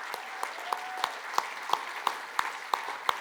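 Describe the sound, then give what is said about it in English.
A small crowd stands and applauds steadily to celebrate a couple's engagement, sharp individual claps popping out in a fairly even rhythm, with a few faint cheers mixed into the clapping. “Do you guys want to stand so we can clap and cheer?”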